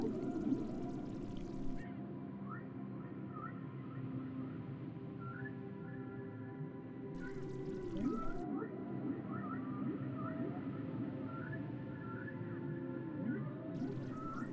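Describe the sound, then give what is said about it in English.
Underwater whale song: drawn-out calls and rising, curving whistles drifting over a deep, steady low rumble, with no talking, just continuous echoing cries. “and allow the whales to take you on a journey through the oceans.”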